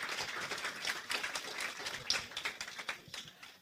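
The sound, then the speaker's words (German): A crowd claps together in a steady, dense burst of applause for a good question, carrying on for a few seconds with no talking over it. “Ich möchte einmal klatschen dafür.”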